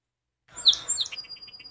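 A song sparrow sings: a few bright, sharp opening notes followed by a quick run of repeated trilled notes, with a robin singing faintly in the background and no talking.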